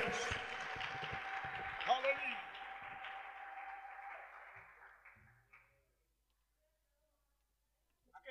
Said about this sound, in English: A big hand clap of praise to the Lord.